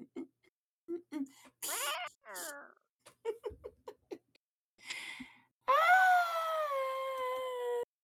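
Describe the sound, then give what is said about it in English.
A human voice imitating a cat fight: short choppy yowls and hisses, a quick descending meow, then a long loud wailing yowl that slowly drops in pitch over the last two seconds. “And it's time for a wet cat fight.”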